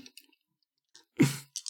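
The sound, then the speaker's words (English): Dice clatter onto a hard surface in a short burst of clicks, rolled for a driving skill check in a game, followed by a few quick lighter taps as they settle. Fairly quiet, with no talking. “Can I just because I haven't rolled dice for a while, can I roll for driving, even though it's a perfectly normal drive?”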